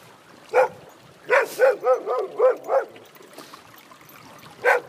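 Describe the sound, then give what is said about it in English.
A dog barks in short sharp bursts: one bark, then a quick string of about six, then a pause before a final bark, with no one talking. “Hey dog, what's your problem?”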